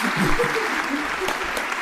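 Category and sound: crowd, audience round of applause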